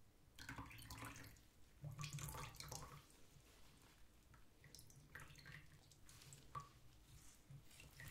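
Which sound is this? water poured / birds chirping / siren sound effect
water poured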